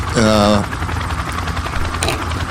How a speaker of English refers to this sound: I got the helicopter going over here. Helicopter blades?